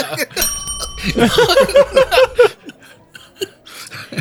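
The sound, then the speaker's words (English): A game-show buzzer bell rings out with a bright sustained tone, followed by a quick run of about six repeated chirping beeps, while people laugh and chuckle throughout. “hit the buzzer.”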